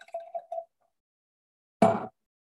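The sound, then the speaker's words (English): Cabernet wine is poured into a glass: a few short, ringing liquid gurgles, then a pause and a brief, louder splashy burst, with no talking. “So let's try some Cabernet.”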